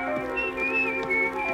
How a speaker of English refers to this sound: To keep up his flagging courage, the pedagogue began to whistle.